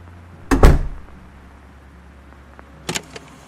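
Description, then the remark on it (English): A heavy stairway door slams shut with a loud, booming thud, followed a couple of seconds later by a softer double click as the latch settles. No one speaks. “So let me guess, the stairway door closed? Yes, right in my face.”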